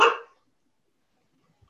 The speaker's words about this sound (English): Oh, puppy. Yeah. I somehow got the greyhound that barks. No. This isn't supposed to happen. I know. Hey, enough. You're going to make the others bark.